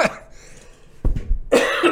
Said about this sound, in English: I can't do that without coughing. Don't worry, I'm in a closed environment, and I don't have the COVID, or the Rona.